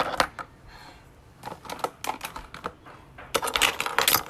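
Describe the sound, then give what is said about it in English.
Clatter of pens being rummaged, handled and put into a folder, with irregular bursts of sharp plastic clicks and taps that grow denser and louder toward the end. No one speaks. “I have a bunch of pens, pen.”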